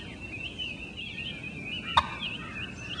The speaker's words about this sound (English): There's a put sound, which is an alarm call. That's this.